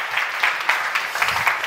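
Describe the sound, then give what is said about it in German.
Steady audience applause for a speaker's introduction, a dense wash of many hands clapping at a fairly even level throughout, with no voices standing out above it. “Der Applaus ist für die nette Anmoderation.”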